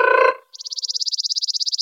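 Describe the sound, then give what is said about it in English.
A voice imitates a bird's trill, made with the tongue: a brief low voiced tone, then a rapid, steady run of about twenty high-pitched pulses that stays even and fairly loud to the end. “Another category of bird call you might hear is what's called a trill. And you do that with your tongue.”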